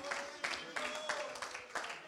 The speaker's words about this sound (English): Oh, clap your hands and praise him right now.